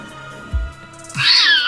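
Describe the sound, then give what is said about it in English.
A cat lets out a single loud, high-pitched meow, preceded by a brief low thump; no one speaks. “Do you think the horse and the cat, they're friends?”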